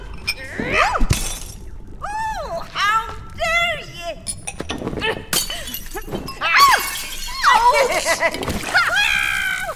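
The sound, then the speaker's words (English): A glass vial being poured shatters in a sharp, bright crash with scattered clinking, while several animated, high-pitched voices talk and argue around it. “You broke my vial!”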